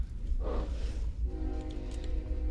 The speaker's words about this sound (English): Dang trains. Star Wars trains.